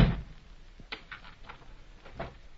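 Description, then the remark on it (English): The door of a room where a man is being held thuds shut, followed by a few sharp, scattered clicks and rattles like a lock being turned, with no voices and a faint background hiss. “Lock the door, Mac.”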